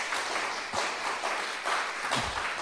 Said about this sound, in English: I just want to give a big hands for the people that prepare everything for here today. Can we just give a big clap?